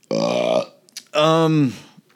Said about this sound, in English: Pardon me, burp.